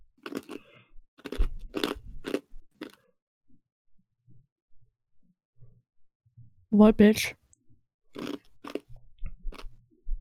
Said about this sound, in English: I'm chewing on ice. We can all hear that, yes.